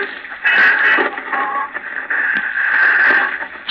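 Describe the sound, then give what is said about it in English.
A radio hisses and crackles with loud, steady static at night as someone tries to tune in a station while rain falls outside, punctuated by brief warbling whistles and shifts in tone as the dial is turned, with no voices present. “Arnold is trying to get something on the radio.”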